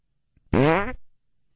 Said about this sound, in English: He's on Fart Hub, isn't he?